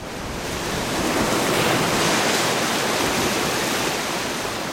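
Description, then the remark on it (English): Heavy storm surf roars steadily, a dense wash of crashing waves building in the first second and holding loud, with a rough wind-like hiss over the water and no voices, as waves erode the coast of the village of Shishmaref. “To the west, waves have taken an enormous bite out of the coast, 25 feet deep.”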